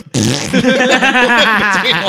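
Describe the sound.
A voice imitates a long, loud fart with the mouth, a sustained buzzing raspberry that wavers in pitch for about two seconds, forceful.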